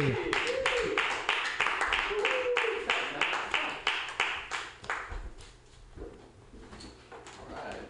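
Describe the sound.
An audience breaks into dense, steady applause, many hands clapping at once. The clapping gradually thins and fades over several seconds, with some crowd voices mixed underneath.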